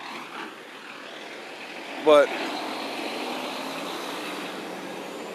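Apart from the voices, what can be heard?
truck approaching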